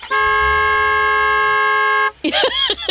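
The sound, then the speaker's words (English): A car horn blares in one long, steady honk lasting about two seconds, loud, then cuts off as a voice starts talking. “He's like honking on the horn.”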